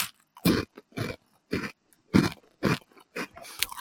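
Loud crunching from biting into a hard, crunchy puffed cheese-curl snack made of organic chickpea, rice flour and tapioca, with about seven sharp crackling chews in a steady rhythm and no talking; the snack breaks into hard shards.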